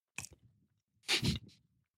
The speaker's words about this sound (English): So I'm holding the mango peach pie. Let's give our listeners a little crunch moment. Oh, that's crispy. That is crisp.